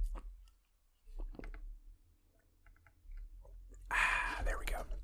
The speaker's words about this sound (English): I should have grabbed my water before. Actually, I have water right here. I was thinking of my Gatorade, but I'm going to take a real sip real quick.